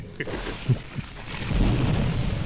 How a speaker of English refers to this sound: That was a traumatic bit of lightning, wasn't it?